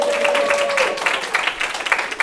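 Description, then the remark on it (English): An audience breaks into applause, a dense, steady wash of many hands clapping at a fairly loud level, with individual claps popping out here and there. “Clap, please.”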